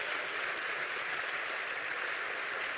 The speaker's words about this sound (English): Let's get the Lord a hand clap.